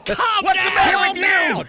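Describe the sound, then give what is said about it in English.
A person screeches at a freaked-out animal, a loud, shrill, strained, wavering voice that rises and falls in pitch across several sustained bursts with hardly a break. “I'm screeching at him. Screech at him.”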